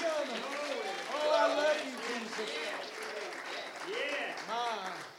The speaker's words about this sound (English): Let's clap our hands and magnify.